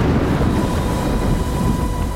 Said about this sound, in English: Laylee heard the deafening crack of thunder.